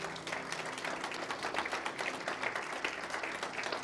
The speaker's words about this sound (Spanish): Den un aplauso al Señor.